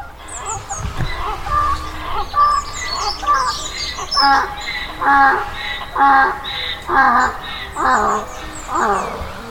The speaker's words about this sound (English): Birds and bird watchers on the nature reserve, seagulls.